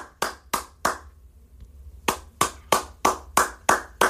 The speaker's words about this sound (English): Oh man, let's get those ladies a hand. Let's get those ladies a hand. Clap it up.